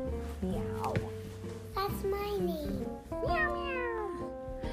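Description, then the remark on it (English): A child's voice imitates a cat, giving several drawn-out, falling meows one after another, fairly loud, with little else in the background. “Meow, meow. Okay, meow, meow.”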